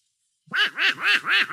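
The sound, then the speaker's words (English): Donald Duck's raspy, cartoonish voice quacks in four quick, rhythmic bursts, loud, with no other sound around it. “What's that noise, Mickey? Oh, that's Donald Duck.”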